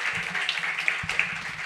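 A crowd applauds steadily, a dense wash of many hands clapping at once with a few sharper claps popping out, and faint low murmuring beneath it.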